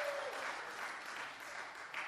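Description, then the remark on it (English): A crowd applauds steadily for a speaker's marriage, dense overlapping claps filling the whole moment at moderate loudness, with no voices standing out. “Yes, let's clap for that.”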